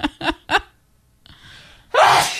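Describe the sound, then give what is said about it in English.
A person sneezes loudly, preceded by three quick catching gasps, a brief pause and a breathy inhale before the sharp, explosive burst that trails off. “So I decided to leave the sneeze in. That was a loud one.”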